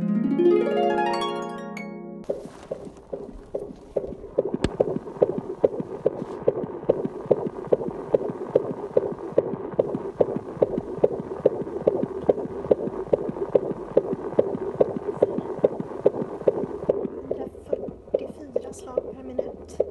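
A fetal heartbeat picked up on a prenatal doppler: rapid, steady whooshing thumps like galloping hooves, heard through a hissing, muffled background, after a brief rising sweep at the start.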